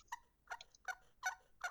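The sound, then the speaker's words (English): Five soft, muffled turkey hen tree yelps played on a game call with an open bottom, evenly spaced and quiet, with no talking over them. “Sleepy old hen right there. Yeah, it's just like a tree call.”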